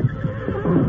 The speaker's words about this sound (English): Look at those horses. Sure seem to be old friends.